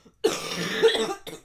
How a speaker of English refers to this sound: Hold on, I need to cough.